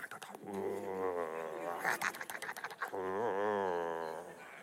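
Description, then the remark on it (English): A person voices a dog's low, rumbling growl, imitating a dog growling in pleasure while chewing a bone: two long sustained growls separated by a short choppy, broken stretch, fairly loud with no other talking. “And the word meditate there is the Hebrew word hagar, and the word means, it points to a dog with a bone who is chewing away at the bone and then growling gently in pleasure.”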